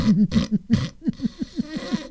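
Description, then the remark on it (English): A voice imitates a woman snoring in bed at night: three or four rough, buzzy snorts, followed by a quick run of short gurgling vocal pulses that rise and fall in pitch, all fairly loud. “Baby, you were snoring.”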